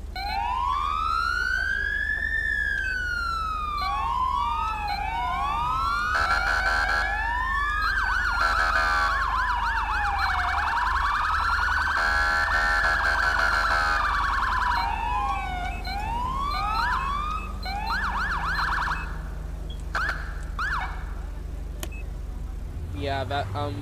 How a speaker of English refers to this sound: So let me give you a demo of the siren that I use, because it sounds just like the state highway patrol here. Doesn't matter which Carolina you live in, they're virtually the same. But this is how they sound.